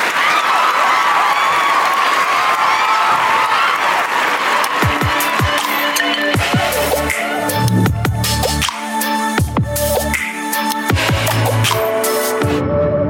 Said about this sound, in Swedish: Applåder.